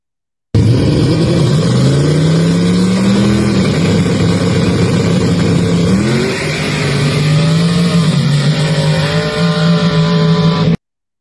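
A loud drag racing car engine revs hard and accelerates, its pitch climbing through several gear shifts with brief drops between, roaring continuously for about ten seconds with no talking.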